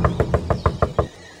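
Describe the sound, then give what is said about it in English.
A quick run of seven hollow knocks on a wooden door standing in the middle of the woods, evenly spaced, fading into quiet afterward. “There's a door in the middle of the woods.”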